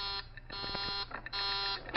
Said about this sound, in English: That's the warning buzzer. It means that someone's coming out.